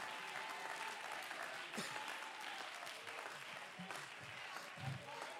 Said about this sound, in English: Could you begin above your head to clap your hands unto the Lord again?